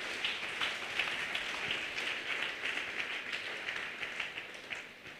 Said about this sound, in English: Clap your hand for Jesus.